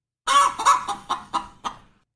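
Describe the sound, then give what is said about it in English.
A chicken, judged by an AI system to be happy, clucks in a quick run of about six short, throaty bursts that gradually soften and space out, with no other sounds around it. “Okay, AI says that that is a happy chicken.”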